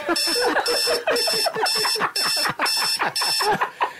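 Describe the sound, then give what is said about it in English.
An alarm clock rings insistently, sounding about eight loud, shrill bursts at a steady pace of roughly two per second, each burst with a buzzy, warbling tone beneath it. “Jeez, I wish this alarm would go off soon.”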